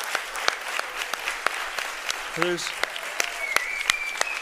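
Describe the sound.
An audience claps in praise to give God thanks during a morning service, a dense wash of hands with sharp individual claps standing out, a brief voice or tone rising through the middle, steady and moderately loud throughout.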